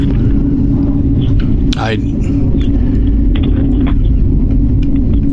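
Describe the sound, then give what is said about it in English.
F-35 fighter jets roar overhead in a steady, heavy low rumble that fills the whole clip without letting up, loud and continuous with a thin hiss riding on top. “What I have to say here, boy, do you hear that? I'm getting buzzed here by the F-35s.”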